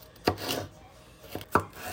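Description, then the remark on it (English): A knife dicing green peppers on a cutting board, the peppers cut into slivers and then across, with a few sharp, crisp chops spaced irregularly and a soft crunch between strikes, no voices present. “I'm just like cutting all the green peppers in like slivers, then cutting them across so it makes perfectly diced green peppers, so that every bite can have a bit of something.”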